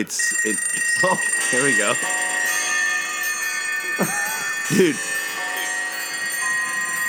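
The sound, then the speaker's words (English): A dense chorus of alarm clocks rings and clangs at once as a song's intro, a continuous loud jangle filling the whole stretch while a man talks briefly over it. “Dude, that's me when my that's my alarm.”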